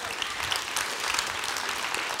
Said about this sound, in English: Looks like I already, go ahead and clap. I'll take a clap.